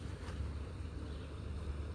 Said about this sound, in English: I hear something. I think I hear water. I do hear water. First I was like, what is that sound? Oh wow, another creek. And this one's actually flowing.